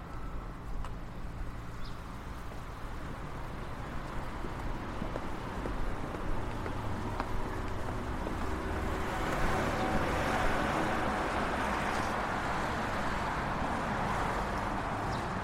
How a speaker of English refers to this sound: So the traffic is roaring again. Ahead of us, we can see another hill on the other side of this busy road.